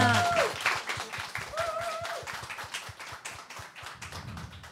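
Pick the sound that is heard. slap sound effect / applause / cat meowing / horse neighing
applause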